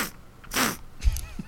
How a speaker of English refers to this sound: I am full of cold. You've got the sniffles, haven't you? Yeah, I'll do it again.